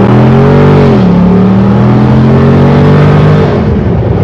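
A loud V8 engine in a 392 roars under hard acceleration, its pitch climbing steadily, dipping briefly as a gear shifts, then rising again in one continuous surge with no talking.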